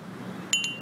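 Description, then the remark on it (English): A teacup clinks a few times in quick succession as someone sips tea sitting outside overlooking a golf green in Riyadh, Saudi Arabia, with bright, ringing high-pitched taps over a low background hum and no talking. “Sipping my tea.”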